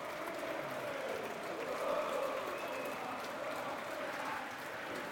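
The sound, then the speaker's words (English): Steady, sustained applause from a large stadium crowd at a football match, applauding player Zian Fleming: a dense wash of clapping that holds at an even, moderate level for several seconds with a slight swell in the middle. “Obviously, he's a crowd favourite. Getting good applause, of course.”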